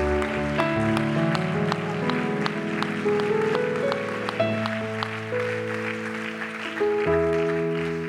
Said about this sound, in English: One more time, let's give the Lord a hand clap of praise. We love the Lord.